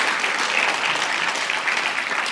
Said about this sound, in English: Can you give our worship team another round of applause of thanks?